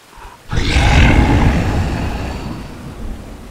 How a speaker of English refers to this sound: A deep, gurgling roar echoed behind us. We turned and saw a dark shadow at the end of the cloud path. It was charging towards us, fast.